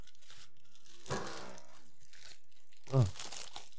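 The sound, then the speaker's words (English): A first package is torn open, with two bursts of ripping and crinkling packaging about two seconds apart, and a brief vocal sound rising over the second tear. “All right, I'm opening this first package.”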